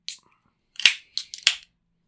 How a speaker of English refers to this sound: Now let's crack open a cold beer and let's get after it.